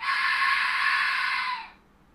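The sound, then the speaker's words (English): A steady, loud rush of breath blown hard into a microphone, a broad hissing roar like a hair dryer that holds for about a second and a half, then cuts off into quiet. “Like it just sounds like a hair dryer on you.”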